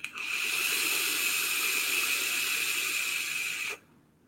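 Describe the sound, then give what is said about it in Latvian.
A steady airy hiss of someone drawing on a vape, with a faint whistling edge, lasting about three and a half seconds before cutting off abruptly into quiet. “Vēl kaut iekšā garšu nil, bet kad es pūšu ārā to tvaik, tad paliek patīkam karamēlīt uz mēlītes, ja?”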